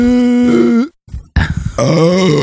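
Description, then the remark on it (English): Two loud, drawn-out burps, the first a steady deep tone and the second rougher and wavering, with a brief silent pause between them. “Burp break. You missed those. That slipped right out.”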